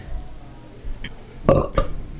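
A short, low belch, with a second brief burst right after, against a quiet background and no talking.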